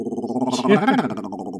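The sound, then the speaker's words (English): A person imitates a cheetah growl: a short, rumbling voiced growl that swells in the middle with a rising and falling pitch, then trails off over about a second and a half. “You know, I do a good cheetah growl, like the wow.”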